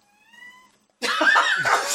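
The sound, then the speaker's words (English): A cat gives a soft, thin meow, then after a brief pause lets out a much louder, harsh, raspy yowl that fills the rest of the moment, with no talking. “Cat here.”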